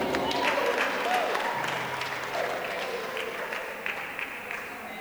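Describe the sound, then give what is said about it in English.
A large crowd applauds steadily for several seconds, a dense, continuous wash of clapping with faint voices mixed underneath, holding at an even level throughout. “If you're going to clap, clap for Cyrus, because you're not getting what I'm saying.”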